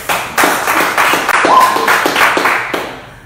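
A burst of audience clapping, steady and fairly loud, with many hands striking in a dense rhythm for a few seconds before it starts to thin out at the end.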